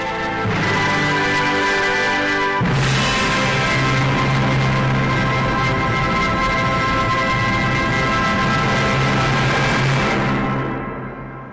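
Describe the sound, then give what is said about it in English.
A band plays Also Sprach Zarathustra at extreme volume in the NASA Goddard Acoustics Chamber, sustained brass chords swelling into a huge, dense wall of sound, with an overloaded microphone buzzing and distorting throughout before the music cuts off. “That was the … playing Also Sprague Zarathustra very, very loudly in the NASA Goddard Acoustics Chamber”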